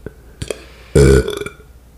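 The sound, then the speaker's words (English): A single loud, deep, rumbling burp lasting about a quarter second, from a person who just had a bagel, preceded by a couple of faint clicks and followed by a quiet breathy tail-off. “Of course, people want to hear the burps on the mukbang.”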